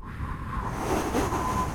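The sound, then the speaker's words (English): Water waves wash steadily around a boat, a continuous, fairly loud rushing with low rumble and a breezy hiss over the top, and no voices. “So we're having a lot of fun out here on the water.”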